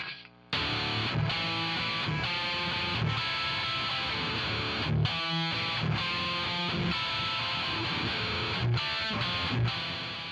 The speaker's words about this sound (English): So that's what it sounds like with a little extra heavy distortion on it.